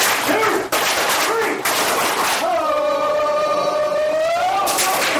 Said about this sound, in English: Let's try that. Put it all together. One power clap.